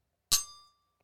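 A single bright clink of glasses touching in a toast before tasting Old Grandad 114, fairly loud, with a clear ringing tone that fades out over about half a second.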